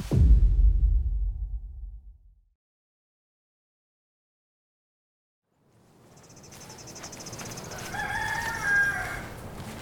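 After a low rumble fades into silence, a farmyard scene rises: chickens calling and a rooster crowing at a farm chicken coop on a cold, clear early morning, over a steady high buzz of crickets and insects.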